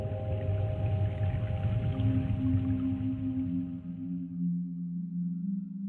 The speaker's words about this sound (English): When the athlete goes under the water, we shift the perspective to just them and the underwater sound. You hear the bubbles. You get the complete sense of isolation, the complete sense of the athlete all alone.